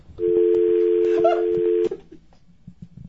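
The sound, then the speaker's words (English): A loud telephone keypad tone from dialing a phone call holds steady for nearly two seconds, with faint clicks layered over it, then cuts off abruptly, leaving quiet low rustling. “Yeah, get Bob on the phone.”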